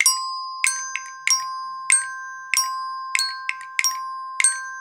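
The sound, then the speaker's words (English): Sharp wooden castanet clicks strike in a steady ta, ti, ti, ta, ta rhythmic pattern, sometimes doubled, while resonator bells ring out clear sustained tones underneath. Played alone, moderately loud, with no voices. “And this is how it can sound like on the castanet. And together with the resonator bells, it will sound like that.”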